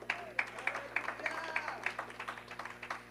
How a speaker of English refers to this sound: Clap praise to the Lord.